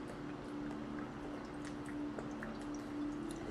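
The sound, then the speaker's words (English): Water from Italy pours steadily into a container, a quiet continuous trickle with a faint ringing tone and a few soft drips, no voices. “Let me get some water first.”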